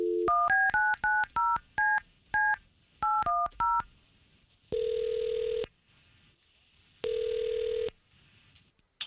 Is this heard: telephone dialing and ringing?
yes